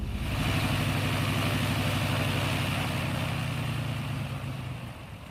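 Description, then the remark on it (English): A small plane's engine roars steadily in flight, a loud, continuous droning hum with a rhythmic throb that eases slightly near the end. No voices are heard. “shouts to you over the roar of the engine.”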